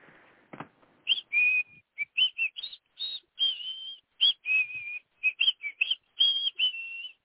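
A person whistles a show tune at a quick, bouncy pace, a rapid run of short clear notes with a few held ones, fairly loud, with no talking.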